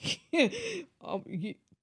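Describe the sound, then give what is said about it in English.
A man yawns, a long breathy vocal stretch that rises and falls in pitch, followed by a second shorter groaning exhale, with no words spoken. “He is yawning in here, and I'm like, am I boring you?”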